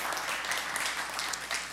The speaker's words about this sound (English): In fact, this round of applause is for you. We love that you guys are here with us. Thank you for being here.